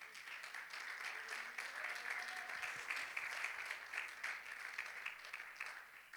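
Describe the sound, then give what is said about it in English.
A church audience claps its hands to the Lord steadily for several seconds, a dense, even wash of many hands with a faint voice murmuring underneath. “Let's clap our hands to him.”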